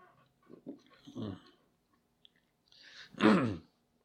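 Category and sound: food or drink, sipping a Coke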